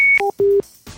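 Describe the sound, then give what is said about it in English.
A fax machine beeps loudly: a steady high tone, a brief lower two-note tone, then a longer low tone, ending in a burst of static hiss. “They built the fax machine.”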